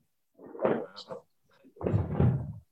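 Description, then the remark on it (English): Two muffled booms of fireworks being set off outside by someone: a sharper crack-like burst, then a deeper, rumbling thud about a second later, with no talking over them. “There's someone's blowing fireworks off already outside.”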